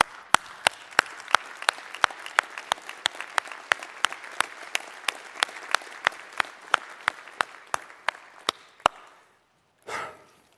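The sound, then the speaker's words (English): An audience applauds in a steady wash of clapping, with sharp claps landing on a regular quick beat throughout. The applause fades out, then a brief final burst of clapping follows. No talking. “There's no audio to it except for maybe the applause in these rooms.”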